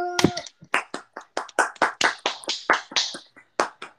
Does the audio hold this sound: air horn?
no